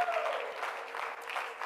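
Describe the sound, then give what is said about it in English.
A roomful of people claps steadily, a dense, continuous patter of many hands at moderate volume with no pauses, and a voice murmurs briefly beneath it at the start. “Oh, let's clap our hands and thank Him for it again.”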